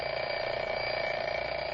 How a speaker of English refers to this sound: All right, sound effects man, ring the alarm clock.